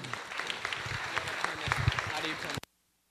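An audience claps steadily in a dense wash of overlapping hand claps at moderate loudness, with sharper claps popping out, before the sound cuts off abruptly into silence.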